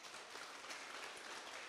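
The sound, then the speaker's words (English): A crowd claps together in steady, dense applause in praise of the Lord, filling the whole moment without pause, sounding like many hands, with no voices standing out. “Come on, the best clap of praise to the Lord.”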